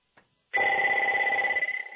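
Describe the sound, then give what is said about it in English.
A phone ringtone suddenly starts ringing, loud, a steady electronic trill with sustained high tones that continues without a break and no voices over it. “That's not my phone.”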